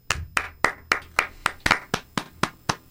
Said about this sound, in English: Everybody clap your hands. There you go. It's tough, I know.